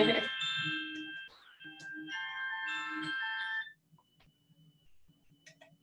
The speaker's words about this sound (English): Had a little alarm there for myself.